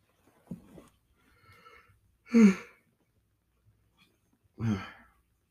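human body sound, yawning

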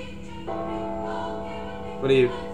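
signal or alarm, ding-dong bell chime

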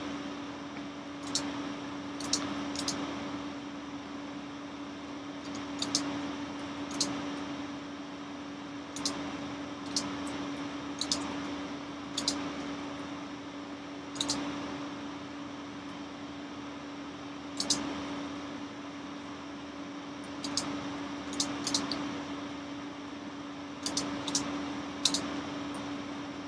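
household object, typing on a keyboard

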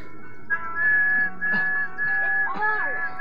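human body sound, person whistling a tune

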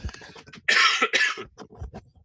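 human body sound, cough

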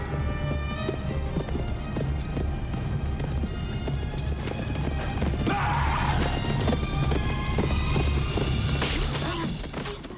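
animal, horses clip-clopping and neighing

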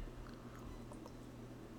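food or drink, sipping green tea

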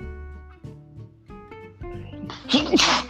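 human body sound, sneeze

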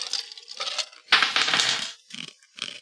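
dice being rolled

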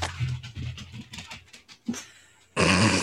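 animal, dog growling

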